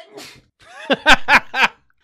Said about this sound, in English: … just sneezed, and she sneezed so hard her headphones fell off.